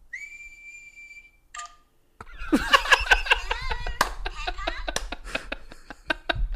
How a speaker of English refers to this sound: Good, because I can't whistle. What's whistling anyway? You put your lips together and blow like this.